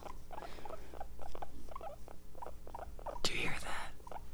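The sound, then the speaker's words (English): A guinea pig squeaks in a steady run of short, high chirps, with a brief burst of scuffling movement partway through before the squeaking resumes. “You know, people are like, guinea pigs are so skittish and they, like, don't want to hang out.”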